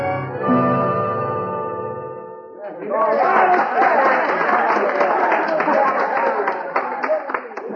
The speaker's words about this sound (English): what's that crowd down the street? It's a medicine show, Hoppy. Down on that vacant corner across from O'Hara's livery stable.